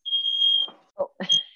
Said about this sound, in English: Oh. Is your fire alarm going off? Yep, probably.